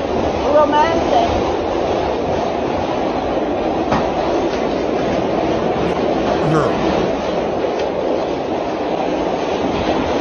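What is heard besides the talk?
train riding on rails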